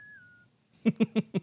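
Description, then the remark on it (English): A voice imitates high whistle notes with four short, strained, evenly spaced yelps. A faint, thin whistled tone comes just before them. The yelps sound fairly loud, with no talking. “I can't hit those whistles, but I'm still going to try.”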